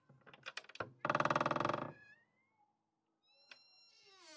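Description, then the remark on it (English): A massive creaky door slowly swinging open: a few short squeaks, then a loud, rapidly pulsing groan that thins into a high whine and fades, with fainter squeals returning at the end. “That's a creaky door. That's a massive door as well.”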